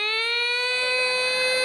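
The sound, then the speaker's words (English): A loud siren blares steadily in a nightclub as a bottle is served, a bright, buzzy electronic wail whose pitch creeps slightly upward, sounding alone with no voices over it. “A siren goes off.”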